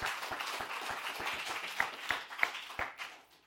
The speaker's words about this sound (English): Yes, let's clap for the Lord.